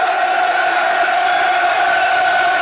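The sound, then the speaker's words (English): A big stadium crowd at a football match roars loudly and steadily, a dense wall of massed voices and cheering that holds at full strength throughout, with no single voice standing out. “Crowd arises from its slumber, almost Shelley-esque.”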